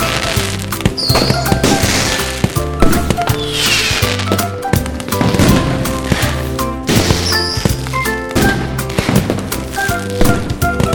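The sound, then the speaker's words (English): Repeated sharp, loud bangs and crackling bursts of fireworks exploding, popping at irregular intervals over a busy musical backing with no one talking. “This is a reminder not to let your podcast mascot play with fireworks.”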